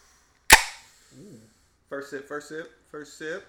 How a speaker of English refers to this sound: So let's crack our beers. Yeah, we get it up. Get it set. Hey, yo. Shout out to Stone Cold Steve Austin with this one. 3, 2, 1. Ooh.